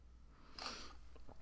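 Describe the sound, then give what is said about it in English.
A single short slurping sip of water, followed by faint swallowing and mouth sounds, otherwise quiet. “Okay, I'm taking a sip of water.”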